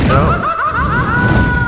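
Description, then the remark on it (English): A loud explosion sound effect cued as a 'hot take' sound: a dense, rumbling blast that stays at full volume for under two seconds, with a wavering, whistle-like tone riding over the roar. “Do we have the hot take sound cued?”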